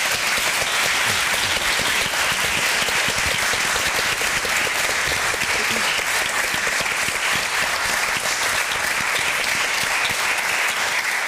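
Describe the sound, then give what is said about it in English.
Sustained audience applause for a panel of speakers before questions from the floor, a dense steady wash of many hands clapping at an even loudness for about eleven seconds, with no speech over it. “So I think before we move to questions, could we just have a round of applause for our panel?”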